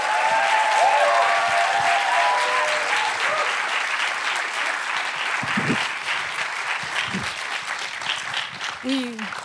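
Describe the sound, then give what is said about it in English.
A large audience claps steadily and loudly to welcome guests for a Q&A, a dense wash of applause that holds for the whole stretch, with a few faint voices and whoops rising above it near the start and end. “So please bring a warm applause for M.I.A. and Stephen Loveridge.”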